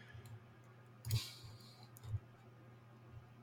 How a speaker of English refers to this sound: I'm sitting here talking and clicking around trying to find anything that might be worth it, but I just don't fucking see it.